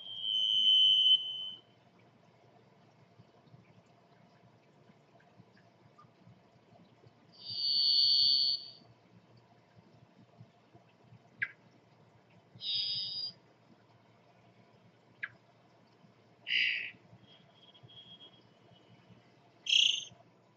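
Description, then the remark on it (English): A varied thrush sings long, buzzy, minor-key whistles, each a single sustained tone at a different pitch, separated by deliberate pauses of several seconds, over a faint low background hum. “Long minor key whistles repeated after deliberate pauses.”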